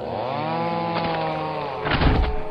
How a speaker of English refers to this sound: As my chainsaw rips through the forest meat